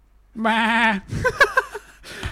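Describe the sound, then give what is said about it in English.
A single sheep bleats loudly, one sustained wavering baa lasting about half a second, followed by a brief burst of talking voices and rustling. “People, no. Sheep, yes.”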